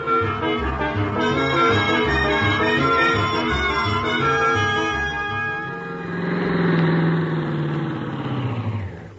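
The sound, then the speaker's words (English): A car engine, started by Miss Brooks for the drive to Clay City, turns over and settles into a steady, throbbing run, then swells as if revving before easing off. It's fairly loud, with no voices. “Oh, start the car, Miss Brooks.”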